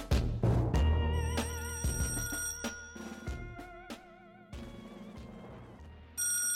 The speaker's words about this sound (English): A ringing telephone and a scramble to answer it used to be a common event in a household.